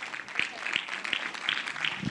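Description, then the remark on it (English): A church audience claps unto the Lord during a sermon in a steady, sustained patter, with sharper individual claps standing out at a regular beat, dense and lively throughout without any speech. “Come on now, clap unto the Lord like you really, because you know.”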